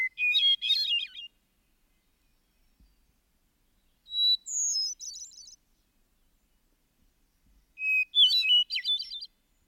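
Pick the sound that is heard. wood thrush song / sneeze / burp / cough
wood thrush song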